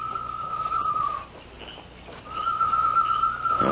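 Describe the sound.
A whistled imitation of a night bird's call, given as a signal from the Lone Ranger that something is wrong: two long, steady high-pitched notes separated by a short pause, each ending with a slight warble, fairly loud over a low background hum.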